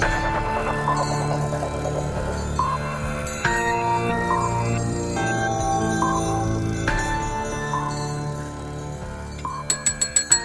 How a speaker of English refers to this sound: I gotta get this away from you. I'm gonna be ringing it the whole time. It's so fun. Wait. Okay, I'm done. That was a fun bell.